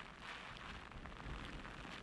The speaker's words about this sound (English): So that's some of the worst that we're likely to see with this system, as well as all the heavy rain that you can see.